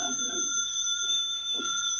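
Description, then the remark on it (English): A telephone rings somewhere in a jam-packed living room with a steady, bright, high-pitched bell tone lasting the whole moment, while faint voices murmur underneath. “Will you please answer the phone?”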